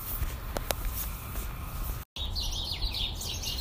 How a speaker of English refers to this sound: I just jumped on here because the birds were going so crazy. Let's have a listen. Oh, see? Now that I tried to record their squawkings, they've stopped. I don't know what kind of bird this is, but there's a lot of really small birds,